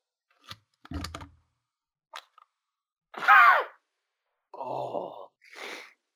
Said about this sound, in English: I sneezed in my elbow rather than spraying it everywhere.